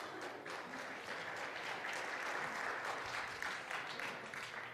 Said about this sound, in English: They're clapping. You don't even know if they made it.